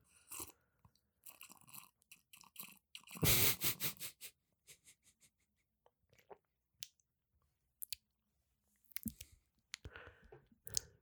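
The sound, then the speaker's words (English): Mouth noises with no talking: a loud slurping sip of tea in the middle, followed by soft swallowing and scattered clicks, like a cup being handled, then a few more brief sips near the end. “let me take a sip of my tea real quick.”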